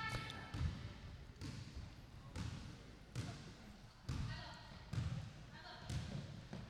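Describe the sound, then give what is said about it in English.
A basketball bounces steadily, about eight heavy, hollow thumps at an even dribbling pace, each one loud with a sharp slap, while indistinct voices murmur underneath. “Hear that? It's a basketball bouncing.”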